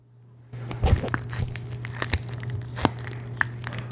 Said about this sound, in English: And so, listen to how this sounds. Let's just listen to this. That's just me slapping this loaf against my hand, but it's like it's wrinkly like a brain.